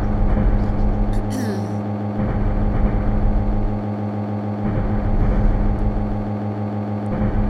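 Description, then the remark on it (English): A train runs steadily, its low, droning engine hum holding a constant pitch beneath a broad rumble, with a few brief clicks and hisses rising over it. “I just hope that whoever listens to me does not fall asleep to the sound of a train.”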